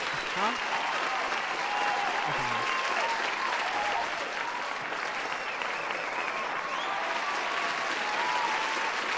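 A crowd gives a round of applause to Versus, dense overlapping clapping holding at a consistent, fairly loud level for about nine seconds, with faint cheers drifting through it and no one talking.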